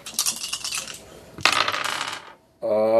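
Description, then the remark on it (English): Four dice are rolled for a difficult spirit check in a game. They rattle and clatter across a hard surface, with a sharp clack midway and a tumbling roll that settles, fairly loud, followed by a brief voice at the end. “Yeah, okay. I think I'll go with that. It'll be a difficult spirit check. Yep, though. Got it. So, four dice.”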